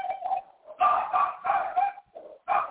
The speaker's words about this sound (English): I see I have competition back there. Do you have a dog now?